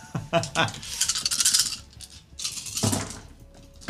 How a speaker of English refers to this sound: just rolling ones and twos out of like 12 dice.